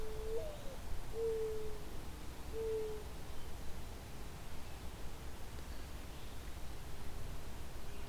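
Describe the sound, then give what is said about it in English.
Soft, low mourning dove coos, three hollow notes in the first few seconds, set against a steady hiss of wind or background noise that carries on alone afterward. “Where mourning doves ranges, you can find them around people's houses, cities, towns, etc., farms.”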